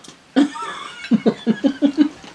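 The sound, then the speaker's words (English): A person coughing up a small piece of onion they had breathed in: a loud cough bursts out, followed after a short pause by a rapid string of six sharp, rhythmic hacking coughs, with no talking. “I just fucking coughed out something out of my lungs.”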